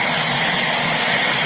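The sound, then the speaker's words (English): Steady, loud helicopter engine and rotor roar fills the moment, a dense continuous whine and rush with no voices over it. “Just lower the helicopter right here.”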